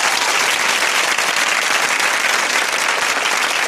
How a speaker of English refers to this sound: Where are my claps?